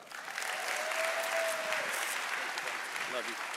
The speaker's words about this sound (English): All right, let's clap our hands for Jesus one more time. Come on.